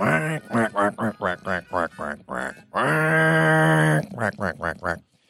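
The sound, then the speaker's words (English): A voice imitates a duck, letting out a rapid run of loud, nasal quacks, then one long drawn-out honk, and finishing with a few more quick quacks. “Quack, quack.”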